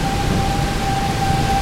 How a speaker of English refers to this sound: So, you know, if it weren't for the tornado siren, just make a good, you know, audio to sleep to at night, you know. Yeah. That siren wake you up, though.